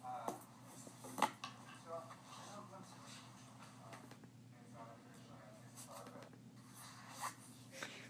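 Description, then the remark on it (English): A backpack zipper rasps in a few short bursts in a class over a steady low hum, with faint scuffs and rustles between them and indistinct murmuring in the background. “Sounds of me in class zipping my backpack.”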